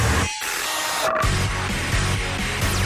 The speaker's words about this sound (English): And that is the last time you'll ever hear the Manly Quiz theme tune on this show, unfortunately.